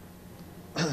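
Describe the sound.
After a near-silent stretch, a voice abruptly makes a loud, harsh, raspy gasp in imitation of the labored breathing of an unconscious young man lying in bed, cut off at the end.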